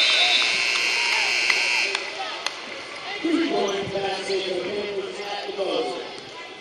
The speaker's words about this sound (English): Down to 5 seconds. Simpson. Fagala. A three for Kelly. Got it at the buzzer.